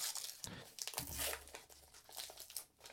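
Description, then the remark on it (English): Continuous crinkling and rustling of wrapping, with brief tearing bursts, as a pad of paper included as a bonus in a box is unwrapped and handled, no voices present. “Okay, this is just a pad of paper.”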